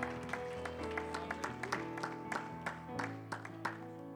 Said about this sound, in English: Give the Lord a hand clap of praise before you're seated tonight.